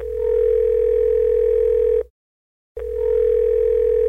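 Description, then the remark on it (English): A steady telephone dial tone hums loudly for about two seconds, cuts out briefly to silence, then resumes just as strong and continuous, as a phone call is placed to a man in Tanzania. “To find out more about what it's like to be a gay man in Tanzania, we are going to phone”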